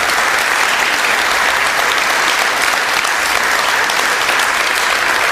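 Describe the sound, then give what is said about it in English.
A large audience applauding military veterans who have stood up to be recognized, a dense, sustained wash of clapping from many hands that stays loud and even throughout, with no voices standing out. “Now, folks, I think this is a time to give our applause.”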